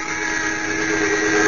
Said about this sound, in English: Cranston and Margot Lane, on the trail of a ring of alien smugglers they suspect of murder, are shot down in a small cabin plane. The pilot dead, the plane out of control is zooming toward the ground.